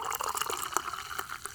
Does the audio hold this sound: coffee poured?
yes